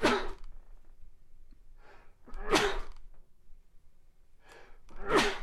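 Three sneezes in a row, spaced a couple of seconds apart, each loud, with the second and third preceded by a quick, audible inhale. No talking.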